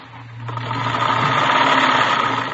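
A sewing machine whirs steadily with a low motorized hum and a rapid rattling stitch as ruffles are stitched on a dress in a back bedroom, starting softly and quickly rising to a constant, fairly loud drone, with no voices.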